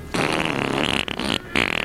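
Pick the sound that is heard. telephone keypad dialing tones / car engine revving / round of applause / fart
fart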